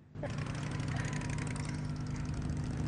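A motorbike engine suddenly starts up and keeps running at a steady, loud rumble with a rough buzzing tone, staying constant rather than fading away. A man has got on the motorbike and is riding off down the road.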